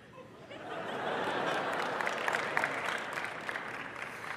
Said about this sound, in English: We want to give you applause if that happened. Anybody that had success from the speed dating?